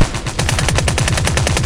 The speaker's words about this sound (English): Activate submachine gun.